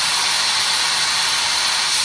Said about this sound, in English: That's white noise. Which I think sounds more like rain.